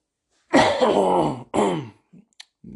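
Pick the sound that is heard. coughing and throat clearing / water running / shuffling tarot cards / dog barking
coughing and throat clearing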